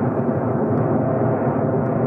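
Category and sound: vehicle, airplane flying overhead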